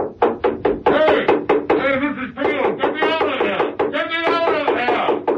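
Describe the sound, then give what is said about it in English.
Steed's umbrella bangs on a floor from beneath: a quick run of sharp, loud knocks, then more irregular thumping that continues beneath a sustained, voice-like tonal sound. “And then, the sound of Steed's umbrella banging beneath.”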